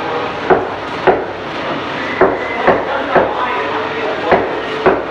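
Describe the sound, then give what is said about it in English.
A person wearing a Bobo mask does a knocking routine at a door: sharp wooden knocks, about eight of them in an uneven rhythm with short pauses between, over a steady rushing background noise. No one speaks. “he's going to do his knocking routine at the door.”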